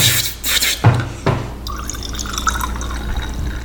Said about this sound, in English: I'm just going to pour you some more sake here. Okay, thanks. Delicately not pouring it on the microphone. Thank you.